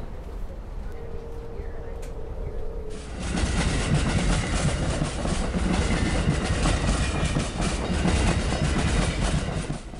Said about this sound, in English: Some of the goods trains that we're now passing, because it's double track at this stage, are so long that they have diesel engines at both ends of the train to enable them to have the power to get to their destinations.